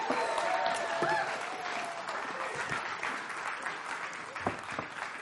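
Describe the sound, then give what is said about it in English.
A large church audience claps loudly and continuously to welcome a pastor onto the stage, a dense wash of applause with a few scattered whoops and whistles rising above it, holding steady throughout before easing slightly near the end. “It's just nice when they cheer, you know, it feels good.”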